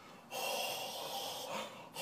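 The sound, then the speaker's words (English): Loud hissing breaths sucked in through the mouth to cool a too-hot bite of food: one long airy inhale followed by two shorter ones, with no talking. “Like, try and cool it off by like breathing.”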